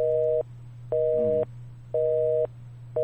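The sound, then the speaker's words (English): A telephone busy signal after a call disconnects pulses on and off in an even half-second rhythm, four steady tones in a row over a faint low hum, with no voices. “The phone got disconnected.”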